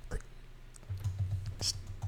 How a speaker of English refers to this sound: You need to use the silent button on your fidget cube